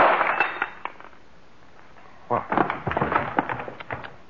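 A Canada Dry bottle strikes a woman's head, knocking her out: a few sharp knocks with a glassy clink, a brief lull, then a louder burst of clattering, crackling impacts that trail off.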